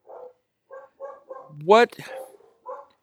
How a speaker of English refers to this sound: I told you the dogs were eventually going to start barking, and now they're going crazy behind me for some reason. This happens every episode.